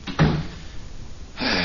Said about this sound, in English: Want me to close the door? Yeah, that's a good idea.